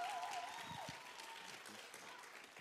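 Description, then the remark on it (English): An audience at Harvest Church applauds for Project Destiny, the church's vision, a dense, steady patter of many hands clapping at moderate volume, with faint voices mixed in beneath it throughout. “Everybody give a hand clap for Project Destiny.”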